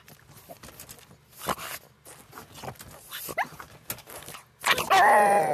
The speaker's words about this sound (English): What? What? What? Because I'm teasing her with a treat. But there you go. A message from my dog.